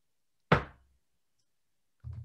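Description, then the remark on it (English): A single sharp knock, made to set off a coin flip, rings out and fades quickly, followed by quiet and then a softer, low thud near the end. “I would like you to knock to make the coin flip.”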